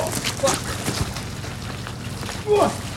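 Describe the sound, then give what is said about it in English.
Steady rain patters, a dense crackle of drops with scattered sharper taps over a low rumble, and a couple of brief muffled vocal sounds rise above it. “It's raining now.”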